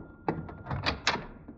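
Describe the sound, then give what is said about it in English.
A door is opened to see who is there, with a short series of knocking thumps and a latch rattle, moderately loud, with no talking. “I'll see who's at the door.”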